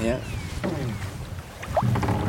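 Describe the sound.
A small rowing boat moving through water, with steady low sloshing and occasional soft knocks of the oars, while faint voices murmur in the background.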